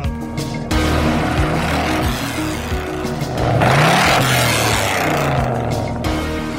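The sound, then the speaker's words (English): A loud classic American car engine rumbles and revs up, its throaty roar swelling and rising in pitch midway before settling back into a steady growl amid outdoor street noise, at a gathering of fixed-up classic American cars. “Amazing display American classics here.”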